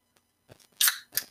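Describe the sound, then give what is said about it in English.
A soda can is cracked open: a few small clicks, then a sharp snap with a bright fizzing hiss, and a second short burst of hiss just after. No one speaks. “But let me go ahead and bust this open real quick.”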